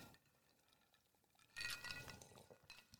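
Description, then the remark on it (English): Ice cubes clink in a glass of Fernet Branca after a quiet moment, a brief cluster of bright, ringing taps mixed with soft liquid sloshing as the glass is moved. No one speaks. “I've got mine just chilling on some ice here.”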